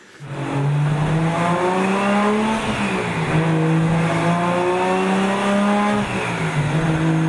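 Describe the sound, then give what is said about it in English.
A loud, tuned turbocharged car engine revs hard, its pitch climbing steadily then dropping sharply at two gear shifts, with the turbo offloading between the shifts, before climbing again, with no voices. “They can hear that engine has been tuned, and maybe it sounds like an import engine. I can definitely hear the turbo offloading between the shifts, though.”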